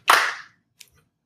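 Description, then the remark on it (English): On a count of one, two, three, a group claps once together: one loud, sharp burst smeared slightly as if not perfectly in unison, followed by a single faint straggling clap a moment later, with no talking. “You all clap in a weird...”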